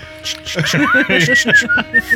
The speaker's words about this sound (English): Love it. Whistling. Taking your time. Oh my gosh. Taking the whole 6 seconds. Except I don't think … can whistle.